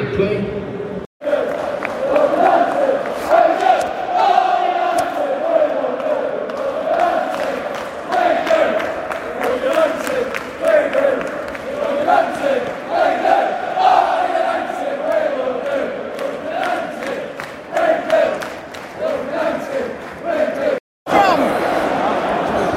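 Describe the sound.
A dense football stadium crowd at St James's Park, during nine minutes of added time while awaiting the final whistle of a game involving United, roars and chants steadily, a sustained wall of massed voices with rhythmic swells and shouts, loud throughout with two brief cut-outs.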